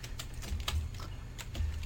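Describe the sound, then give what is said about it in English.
Rapid, irregular clicking of keys on a computer keyboard as a woman types a reply during a Skype call, fairly steady throughout, with a low hum underneath and no voices. “All right, she's typing back now.”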